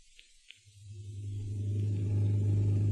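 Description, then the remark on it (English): A new car's engine gives a low, steady rumble that swells louder as it comes down the street and pulls up to the curb to drop a passenger home, after a couple of faint clicks; no one speaks. “Hey, look down the street. Holy smoke. That's Zaza's new car. She's driving Gail home.”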